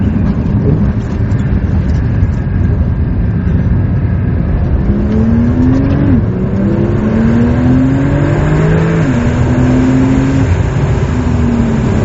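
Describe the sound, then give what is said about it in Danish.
A Porsche 911 Turbo S sports car accelerates hard in the Dolomites, its loud engine note climbing in pitch through several quick gear shifts over a constant low rumble, with no voices. “Officielt der går den her Porsche 911 Turbo S fra 0 til 100 på 3,1 sekund.”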